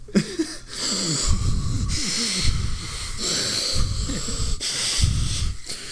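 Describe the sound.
A voice imitates Michael Myers' heavy, muffled breathing through his mask, slow wheezy inhales and hissing exhales repeating in a steady rhythm, loud, with no talking.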